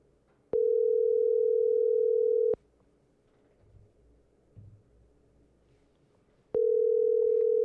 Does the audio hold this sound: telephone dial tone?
yes